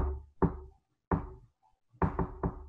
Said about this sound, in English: And an hour nearly to the mark, there's a knock on the door that's like a...